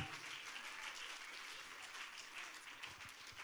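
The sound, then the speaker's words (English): A standing audience claps and cheers together for people invited up onto the stage, a dense, steady wash of applause that holds at an even level throughout, with no one speaking over it. “And yeah, let's all stand and give them a big cheer.”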